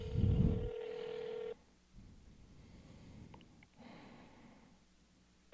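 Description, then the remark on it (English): A phone ringback tone: one long, steady electronic ring lasting about a second and a half, followed by a quiet pause with low background hiss and no talking. “So I don't know what I'm going to say to Adam, but it's ringing now.”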